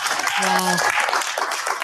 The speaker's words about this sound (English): 8 o'clock in the city. Different scenes. All across the UK, people are applauding healthcare workers, helping in the fight against coronavirus. Little kids hitting cowbells.